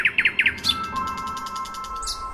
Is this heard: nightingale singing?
yes